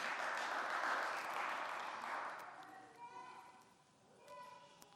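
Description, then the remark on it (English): An audience claps together in a dense, steady wash of applause after hearing that somebody returned home to the Father on Thursday; it fades out after a couple of seconds, and then a single voice begins speaking. “I knew you'd clap.”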